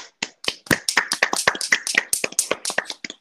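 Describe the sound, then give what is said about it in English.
A short burst of applause: a dozen or so sharp hand claps in a quick, fairly steady rhythm, loud and distinct, with no voices. “Can I get a round of applause?”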